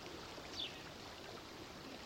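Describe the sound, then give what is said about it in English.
Steady, low rush of flowing river water fills the whole moment, a soft continuous wash with a faint brief chirp near the start and no voices. “I think we're in a river.”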